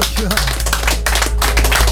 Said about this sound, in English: So ladies and gentlemen, can I have a round of applause for JD Robin Albers.